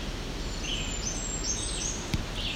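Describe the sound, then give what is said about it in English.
Thin, very high-pitched Blackburnian warbler song, faint, with a few wispy notes drifting over steady outdoor background noise; no one speaks. “Thing about Black Bernian is they do have multiple songs, and that is apparently one of them.”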